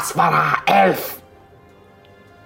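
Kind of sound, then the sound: human body sound, sneeze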